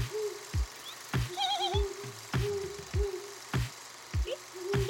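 The hooting noise of the show The Hoot: a series of low, steady hooting tones repeats in a loose rhythm, each broken by a sharp percussive knock, with a brief warbling higher call rising over them and no voices.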